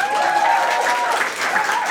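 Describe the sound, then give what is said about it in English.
Steady audience applause for the lighting operator fills the whole two seconds, a dense wash of many hands clapping, fairly loud and even, with no talking over it. “Give her some applause.”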